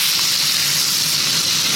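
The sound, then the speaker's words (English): A burger patty, just flipped to crust the other side, sizzles steadily in a frying pan, a dense, bright crackling hiss that stays constant and fairly loud throughout, with no voices. “Burger flip. Time to put a bit more crust on the other side.”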